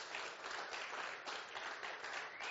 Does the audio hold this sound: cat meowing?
no